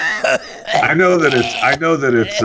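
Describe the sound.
A voice imitates a hacking cough with a string of strained, raspy vocal bursts and groaning sounds, loud, lasting a couple of seconds.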